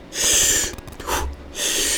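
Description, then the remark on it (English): Forceful breaths drawn sharply through the nose and mouth in a sympathetic breathing demonstration: a long airy inhale, a brief puff, then another strong inhale, with no talking. “To activate the sympathetic, it's a longer inhale, shorter exhale.”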